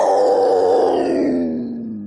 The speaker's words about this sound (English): Is that like a mountain lion? Yes.